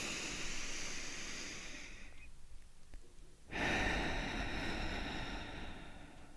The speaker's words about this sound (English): But first, let's take a deep breath in and a deep breath out.